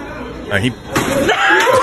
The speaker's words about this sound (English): That's a heavyweight punch. Wow. That is a Tyson Fury shot to the face. Wow. Man. That's a big punch. He went to the hospital, broken nose.